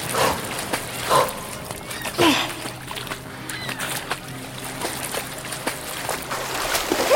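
A dog named Luna barks a few times in short, sharp bursts spaced a second or so apart, set against a steady wash of water and outdoor ambience.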